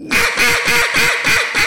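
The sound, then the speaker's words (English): A rapid run of about six loud, raspy quacks from a duck call, evenly spaced, with no talking over them. “I want to get the duck right because I really like those ducks.”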